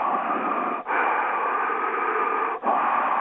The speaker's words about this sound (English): Okay, sir, we really can't have the long breathing moments because it's a little offsetting.